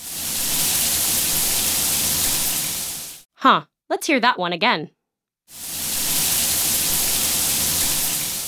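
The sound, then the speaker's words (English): A steady hiss of a hot shower's water pouring, heard in two long stretches, with a short gap in between where a person speaks briefly. “You can thank code if you take a hot shower or a warm bath in the morning.”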